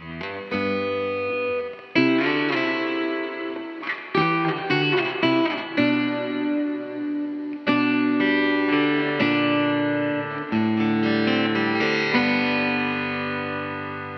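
A recorded rock song plays loudly, driven by heavily distorted electric guitar with thick sustained chords that shift every few seconds, and no voices are heard.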